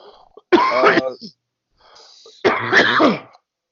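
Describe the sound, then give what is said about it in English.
Two loud, voiced sneezes about two seconds apart, each a sudden burst that fades quickly, with faint breathing before each one. “Bless you,”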